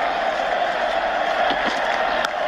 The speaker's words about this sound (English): There it is. Wonderful victory. Wonderful innings. There goes Michael Hussey. Listen to the crowd.